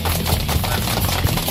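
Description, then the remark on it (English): A crowd claps steadily, a dense, crackling patter of many hands at a fairly loud, even level with no pauses and no voices over it. “That's like the audience that never stopped clapping right there.”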